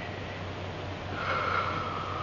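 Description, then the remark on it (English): A person breathing, a soft airy hiss that swells slightly partway through, with a faint nasal, snort-like edge over a steady low hum. No one speaks. “Somebody else in this room is breathing.”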